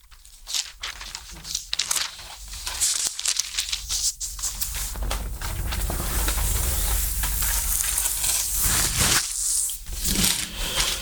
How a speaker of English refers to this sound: Love to hear pages turn. Yeah, me too. Mm-hmm. I like real Bibles, man.